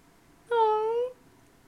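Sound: cat meowing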